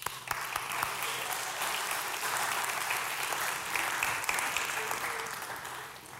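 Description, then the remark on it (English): An audience claps for the volunteers steadily for about six seconds, a dense wash of overlapping handclaps at a fairly even loudness that thins out slightly at the end. “Aha, take a seat, let's clap for the volunteers.”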